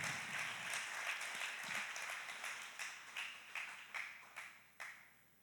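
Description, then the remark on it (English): A church audience applauds the Lord with a dense patter of many hands clapping, which gradually thins out until only a few scattered, separate claps remain at the end. No one speaks. “Give the Lord a strong round of applause.”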